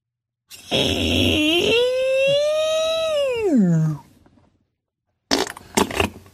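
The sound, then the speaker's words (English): A voice imitates a squeak as a homemade sound effect for a video's soundtrack: one long, strained whine holding a steady pitch, then sliding down into a low groan. Brief breathy noise bursts follow after a pause. “Yeah, I did my own sound effects.”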